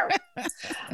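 A dog barks several times in quick succession, sharp, with a short pause after the first bark and a more drawn-out, yelping bark toward the end.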